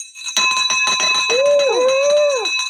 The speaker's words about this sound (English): All right. We got the victory bell firing off for you.